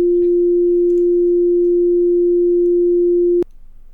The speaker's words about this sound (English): I'm going to beep, like, all of that, and it's going to be incoherent, but it's going to be funny.